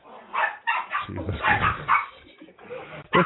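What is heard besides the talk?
dog barking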